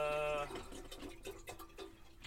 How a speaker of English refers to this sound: Anyway, I'm gonna put my tea on. Water in the kettle.